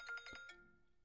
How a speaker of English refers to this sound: And I'm getting a phone call. Hold up.